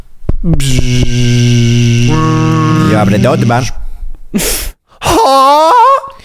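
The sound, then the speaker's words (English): A voice imitates a car window rolling down with a long, steady buzzing hum that wavers and slides in pitch, then a short breathy burst and another warbling vocal tone. “Okay, make the sound effect of like the window rolling down.”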